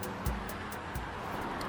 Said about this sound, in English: And there's the sound of the highway behind my trailer.